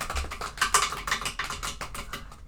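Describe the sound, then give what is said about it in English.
Rapid, uneven tapping of two pencils on a hard surface, a quick drum roll of sharp clicky hits lasting a couple of seconds, moderately loud with no talking. “Can I get a drum roll, please? Wait, let me get 2 pencils.”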